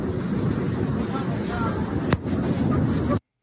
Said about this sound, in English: And then you might be able to hear. You might be able to hear some hail hitting the airplane.